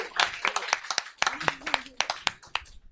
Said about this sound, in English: Round of applause to the audience.